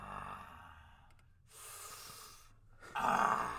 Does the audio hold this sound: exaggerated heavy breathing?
yes